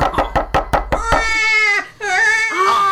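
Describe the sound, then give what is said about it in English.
On New Year's Eve, a quick series of about seven sharp knocks at the door wakes a baby, whose loud, high-pitched wailing cry pauses briefly for a breath before continuing. “The knocky woke him up already.”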